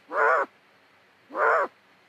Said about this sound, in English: That's the largest owl that lives in this greater Yellowstone ecosystem